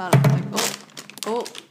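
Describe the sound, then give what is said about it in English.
A loud thud of something dropped, followed by a brief burst of crinkly rustling, then a short stretch of voice. “dropped the chuff. Rustling. Very loud, very rad rustling.”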